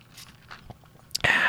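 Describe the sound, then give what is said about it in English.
Dogs making noises, with soft, scattered crunching and chewing clicks for about a second, then a sudden louder, hissing rush of sound to finish. “And I'm sure the microphone's picking up the dogs, making dog noises behind me right now.”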